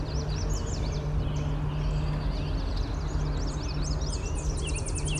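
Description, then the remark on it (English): A Tennessee warbler sings a rapid, staccato trill among other birdsong, including red-winged blackbirds, recorded on an iPhone without an external microphone, over a steady low rumble of outdoor background noise. Several birds chirp throughout. “There's a Tennessee warbler.”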